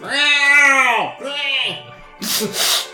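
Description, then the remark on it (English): A person imitates an angry cat with its fur up on its back: two drawn-out, wavering yowls followed by a sharp, breathy hiss, loud with no other talking. “Oh, yeah, there's big full hissing, the fur's all in the back.”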